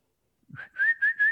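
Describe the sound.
A person outside a house whistles for a dog, a steady high note starting with a short rising chirp and then pulsing in three quick swells, with no talking.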